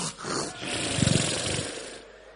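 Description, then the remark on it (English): A person's voice imitates a lion's roar: a rough, gravelly growl lasting about two seconds, swelling into a pulsing rumble midway before trailing off, fairly loud. “And you sleep, there is a lion on your life.”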